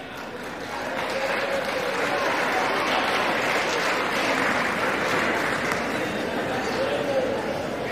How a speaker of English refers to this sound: You can hear Democrats cheering. Things got a little bit of out of order, and they had to use the gavel.